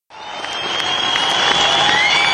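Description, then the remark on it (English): A large concert crowd roars and applauds steadily at the close of a show as the band stands on stage listening, a dense wash of clapping and cheering that swells slightly and holds loud throughout, with faint whistles riding on top. “And they just stood there and listened to the crowd here.”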